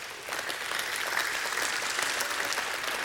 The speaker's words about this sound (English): If you believe that, just give Him a hand clap of praise.